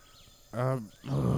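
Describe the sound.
A person imitates a lion with two short, loud, throaty roars in quick succession, the second one harsher and more growling, voicing a lion character in an acted scene.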